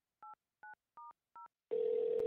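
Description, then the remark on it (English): Four short, evenly spaced beeps of telephone keypad dialing tones, clear, followed by a sudden steady buzzing line tone with a noisy hiss. No one speaks. “so I guess we're just going to have to go back to the phones.”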